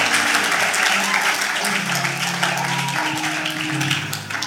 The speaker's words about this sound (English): Oh, keep clapping, keep clapping, keep clapping.